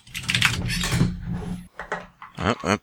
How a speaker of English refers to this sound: Just heard me typing on it.